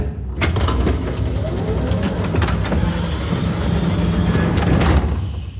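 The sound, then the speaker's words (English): A heavy mechanical rumble of an elevator arriving at a chamber core and settling into place, with hissing bursts and clanks as its doors slide open onto a large, empty spherical room with metal walls. Loud, no voices. “The doors have opened to a large spherical room.”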